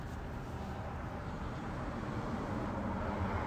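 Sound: car passing by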